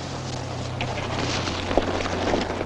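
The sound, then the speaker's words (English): A wind sound effect: a steady, breathy rush of wind blows throughout over a low, constant hum, with one brief soft thump partway through and no voices. “I love the wind blowing sound effect.”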